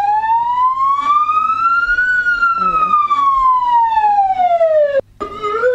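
A police car siren wails loud and close, its tone climbing slowly and then sliding back down in one long sweep before cutting out briefly near the end.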